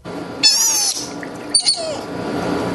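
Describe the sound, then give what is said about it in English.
A male sea otter pup, estimated 2 to 4 weeks old, found off northern Vancouver Island and cared for at the Vancouver Aquarium Marine Mammal Rescue Center, squeaks twice: a long, shrill, wavering cry, then a shorter squeal that bends downward in pitch, with steady background hiss and no talking. “They estimate this sea otter pup is only 2 to 4 weeks old, and so will need round-the-clock care.”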